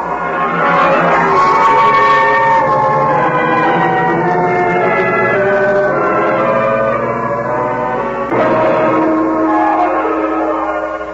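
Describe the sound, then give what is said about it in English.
The creaking door of the radio show The Creaking Door opens slowly in one long, loud, groaning sweep of wavering, sliding pitches, briefly catching and then resuming toward the end, with no voices. “The creaking door is opening.”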